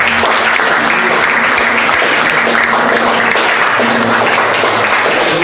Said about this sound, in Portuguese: Aplauda o Senhor.